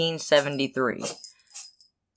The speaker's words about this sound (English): Bless you. Sorry, there was a cat sneezing during that. I don't know if you guys heard it or not.